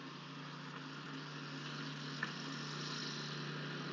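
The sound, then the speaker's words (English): A passing lawnmower engine drones steadily, a low buzzing hum layered with broad rough noise that swells slightly in loudness over a few seconds as it gets closer, with no voices. “Oh, there's something buzzing. Yeah, lawnmower.”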